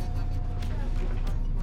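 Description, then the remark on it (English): A steady, low engine rumble inside a moving bus heading to Llandudno, with a faint whine and brief rattling bumps over the constant drone. Indistinct voices may murmur faintly underneath. “Our traveller climbs aboard the second bus. We get a seat near the middle and watch out the window as the scenery passes.”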